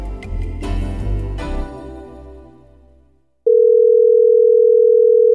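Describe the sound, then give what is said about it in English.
A few seconds of music fade out, then a loud, steady telephone dial tone begins abruptly and hums on unbroken at one pitch to the end. “Today, I want you to listen to a special phone call.”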